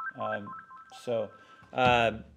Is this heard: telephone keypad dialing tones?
yes